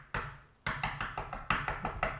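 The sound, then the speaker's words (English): A single knock on a hard surface, a short pause, then a quick, steady run of about eight more sharp knocks, fairly loud, with no talking. “Well, I am going to say that, going back to what you said about when he knocked on the door.”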